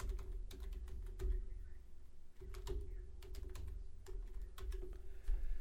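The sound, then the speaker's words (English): Rapid, irregular clicking of keys on a heavily used computer keyboard with letters rubbed off, steady throughout, with a low constant hum underneath and no voices. “This keyboard has been used so much that the goddamn fucking letters and shit are fucking getting rubbed off.”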